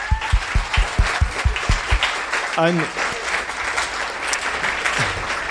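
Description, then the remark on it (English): An audience at a panel event claps steadily for everyone who has been on the panel, a dense wash of many hands filling the whole stretch, with a brief spoken word cutting through midway and a few sharper thumps early on. “And I just want to give a round of applause to everybody who's been on the panel so far.”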